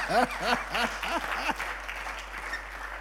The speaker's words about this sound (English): Thank you for the half-hearted clap. At least you're clapping.